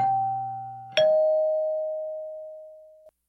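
A two-tone doorbell chime rings once, a higher note followed by a lower one that hangs and slowly fades over a few seconds, clear with no voices.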